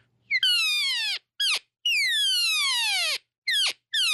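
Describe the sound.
An imitated cow elk estrus call, a 'hyper hot', made with a Wayne Carlton elk call: two long, loud, high-pitched mews that slide downward, broken up by three short, sharp chirps. There is no talking.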